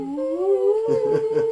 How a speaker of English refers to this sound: Okay. The dog's going to start howling.